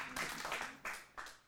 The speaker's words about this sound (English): Come on, now that's resurrection. You clap for that, all right.